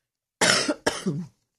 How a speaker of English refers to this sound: I need to cough just a little.